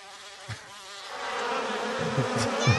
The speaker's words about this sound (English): Bunch of bees.